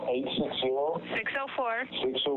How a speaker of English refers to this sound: Okay, you keep breaking up, sir. I need you to hold the phone to your face because I keep hearing you really far away.